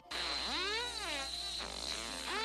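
A whale's song in sweeping, buzzy tones that rise and fall in long glides, rather like a drawn-out fart, sustained over a steady low hum with no talking.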